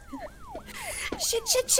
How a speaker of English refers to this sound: You are weaving in and out of these buildings. You can hear sirens chasing and gaining on you as you're flying through.